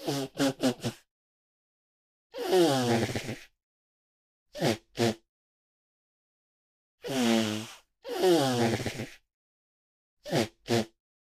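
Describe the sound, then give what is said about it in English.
A man blows his nose over and over: clusters of quick, sharp snorts alternate with long, wet, honking blasts that waver in pitch, separated by brief silences, with no talking. “A man blowing his nose for far too long.”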